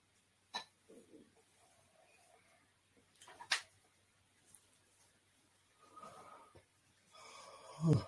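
Someone lets out a drawn-out, breathy yawn, with a few short wheezy breaths and snorts scattered before it, near the end growing louder.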